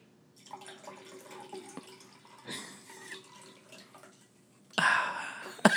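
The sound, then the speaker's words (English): A home-brewed drink is poured into a glass, a steady liquid splash with a faint ringing tone, broken by louder bursts of pouring and ending in a sharp, bright gush. “Right into my glass.”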